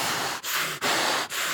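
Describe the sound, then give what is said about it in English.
A voice imitates heavy, threatening breathing, acting out a man breathing threats and murder against the disciples of the Lord like a war horse: four loud, harsh, rasping breaths in a steady rhythm, each separated by a brief pause, with no words spoken. “Like, he's breathing like a war horse is underneath some of these words.”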